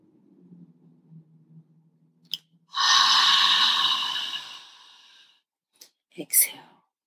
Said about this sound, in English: We're going to pull in all new air on one. We're going to blow out all the past week's old air. We're going to just blow it out. All right. Deep inhale on two.